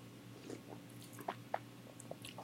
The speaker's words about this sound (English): Sips, yeah, sips. Let's take some sips.